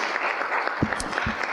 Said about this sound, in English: I think that does deserve a round of applause. Okay, everybody.